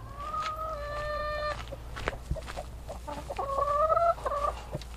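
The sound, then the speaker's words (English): Hens cluck and squawk, with drawn-out calls from a flock layered over a steady low background hum; no one speaks. “We had a free-range hen business, so we had about 1,000 hens at the time, and it was a really lovely lifestyle.”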